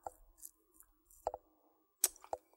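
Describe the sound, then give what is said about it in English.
Dice rolled for an investigation check in a tabletop game rattle and tumble quietly, with soft scattered clicks followed by a few sharper clacks as they land and settle on a hard surface. No one speaks. “These dice, they take forever.”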